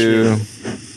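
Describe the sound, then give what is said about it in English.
A short steam train effect: a loud, steady whistle blast fades into a couple of breathy, hissing chugs, all within about a second. “And now, everyone's favorite segment. Plugs and the plug train coming down the track. Chugga chugga.”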